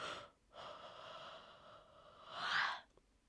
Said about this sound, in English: What the heck is this yawn for?